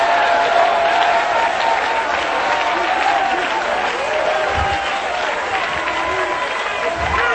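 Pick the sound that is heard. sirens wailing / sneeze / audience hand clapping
audience hand clapping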